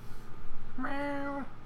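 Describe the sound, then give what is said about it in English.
A person imitates the meow of Gary the snail from SpongeBob: a single drawn-out, nasal mewing tone lasting about half a second, clear over a quiet background hum. “I used to do a really good one when my voice didn't crack. Meow.”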